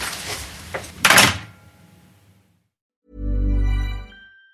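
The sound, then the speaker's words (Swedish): A door is opened: a latch clicks, then a brief rush of rustling movement fades out. After a pause, a low, steady humming tone swells and dies away. “Ska jag öppna dörren här och så ska jag så.”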